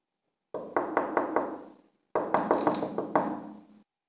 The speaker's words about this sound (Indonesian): pergilah dan ketuk pintu toilet tu.